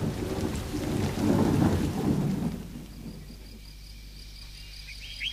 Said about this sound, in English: It can't go on forever. Oh, it will. I know it will. It'll rain forever and ever. Now we know why there's so much water. It'll be over by morning.